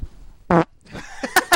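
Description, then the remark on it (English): A loud fart made with the rear right up to the microphone: one short, buzzy blast, followed by a few quieter sputtering bursts. No one speaks. “That's the best fart I've ever heard in my entire life.”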